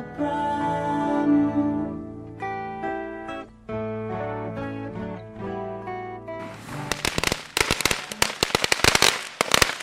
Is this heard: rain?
no